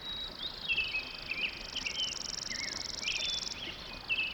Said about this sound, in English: An uplifting dawn chorus featuring not only the robin's musical lay, but also the ringing trills of juncos and the flute song of a hermit thrush.